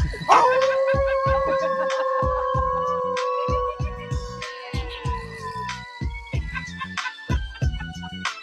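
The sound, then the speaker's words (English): A dog lets out a long, steady howl for several seconds, then breaks into short yips, all set against a regular thumping drum beat. “If you leave me for a minute, I whimper and woo. Like yipping, like yapping, like yipping.”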